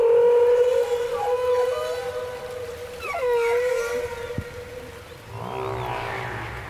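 Long, tonal whale calls moan and glide through a murky underwater hiss, one steady wail bending into rising and falling sweeps, with a brief low thump near the end.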